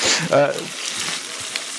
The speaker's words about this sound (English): We got the sizzle. Yeah. We got a little sizzle going. Yeah. Are we grilling over mesquite, or what are we sizzling over here?